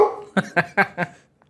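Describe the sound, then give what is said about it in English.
A dog barks four times in quick, evenly spaced succession as the mail is delivered, each bark short and sharp at moderate loudness, with a brief whine-like sound just before and no talking. “I have a dog as well.”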